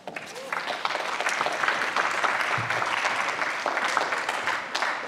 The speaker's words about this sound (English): Ben and David are just joining us now, so let's just give them both a round of applause.